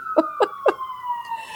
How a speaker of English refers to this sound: Oh, geez, there goes a siren. Yeah, we heard it a while ago. Yeah, I know. Well, there goes the siren.